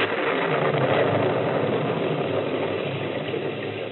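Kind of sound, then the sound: vehicle, car engine running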